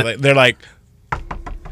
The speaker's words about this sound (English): I've been alive 20 years and still haven't found the right thing to say when someone knocks on the door of the public bathroom you're in.